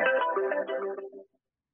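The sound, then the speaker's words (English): A mobile phone ringtone plays a brief electronic melody of quick, stepping notes for just over a second, then cuts off into silence. No one speaks over it. “That would have been my phone.”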